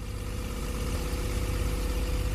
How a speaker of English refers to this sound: He reached the bus stop. The school bus was approaching.